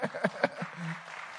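A church audience claps for the pastor's wife in a brief, uneven burst, with a few sharp hand claps standing out before a voice briefly cuts through and the applause trails off.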